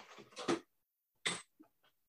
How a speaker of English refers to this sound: Sorry, my cat's making a lot of noise.